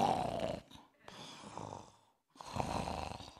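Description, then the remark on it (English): A lion's deep, rumbling purr-growl comes in three long, breathy bursts with short pauses between, fairly loud, with no voices present. “No one knows what it's like to be on a lion posturpedic mattress, sleeping to the purring of a...”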